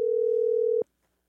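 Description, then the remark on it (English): A loud, steady telephone dial tone hums at a single pitch for under a second, then cuts off abruptly into near silence as a call to a listener goes through. “let's call one more listener before we go. Matt, let's go to the phones.”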